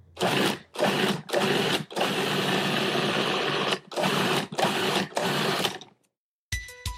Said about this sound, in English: That is the sound of a food processor.